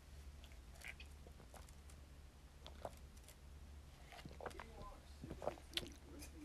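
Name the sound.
sipping a drink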